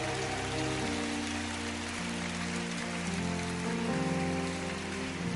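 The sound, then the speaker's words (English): An audience at a church impartation service claps their hands in a dense, continuous patter that fills the whole clip, while sustained organ-like chords hold and shift underneath at an even, loud level. “Clap your hands and say, I will become.”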